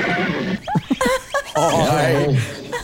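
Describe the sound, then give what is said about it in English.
A person imitates the neigh of Mr. Ed, the famous horse, with a few quick, wavering whinnying bursts, then a longer drawn-out whinny that falls in pitch, loud. “That is a horse, and that's the horse is the famous Mr.”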